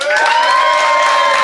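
A debate audience at the Phoenix claps and cheers to vote for one side, loudly and steadily, a dense wash of applause with high sustained whoops riding over it, no break for the full moment.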